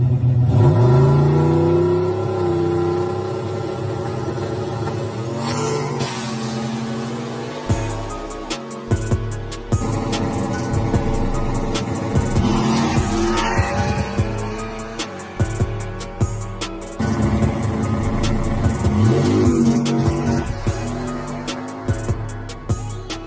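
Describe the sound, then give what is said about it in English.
A loud race car engine roars and revs as the car takes off, its pitch climbing through repeated hard accelerations and gear changes, with some rattling clatter and no talking. “Let me run that first clip with just those little clips of you taking off so they can see the car.”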